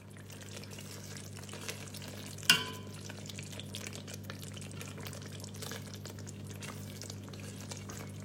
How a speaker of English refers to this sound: Here you can hear the crackling sounds of Indo-Sichuan chili sauce that Nick is making.